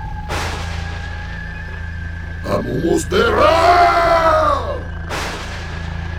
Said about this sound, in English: More thunder, and the world seemed to shake.